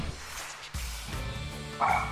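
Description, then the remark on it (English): A male guard dog barks in a few sharp bursts, the last one loudest and most strained, with no talking over it. “Speaking of dogs. My dog gets very excited, and he also is our guard dog.”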